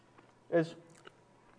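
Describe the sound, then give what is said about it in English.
Soft, sticky chewing of a fudgy brownie: one brief burst of wet mouth noise mixed with a short voiced hum, then a faint smack and quiet. “I'm sorry for the noises.”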